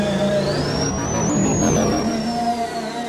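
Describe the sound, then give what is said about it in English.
A collected mechanical siren, recorded in a parking garage so it would echo and used for the speeder's dive in the speeder chase, wails, its high whine gliding upward and holding before easing down, over a thick, rumbling mechanical drone, loud and steady, with heavy echo and no voices. “We collected a bunch of mechanical sirens, and that one was a real star. We took it and recorded it down in the parking garage so it really would echo.”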